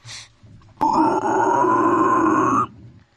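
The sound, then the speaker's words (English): A person voices a loud, rough pig squeal, one sustained strained cry lasting nearly two seconds with a gritty, growling edge, preceded by a brief faint breathy sound. “You gotta give us a pig squeal, a pig's call, or a dinosaur impression.”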